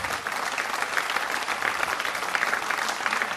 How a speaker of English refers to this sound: How about a hand clap for the moms again?